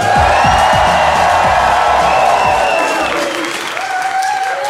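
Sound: crowd applauding and cheering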